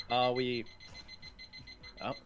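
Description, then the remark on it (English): A timer alarm goes off with a loud, bright electronic tone lasting about half a second, then a pause with faint background rustle before a second short burst. “Oh man, the timer's already off.”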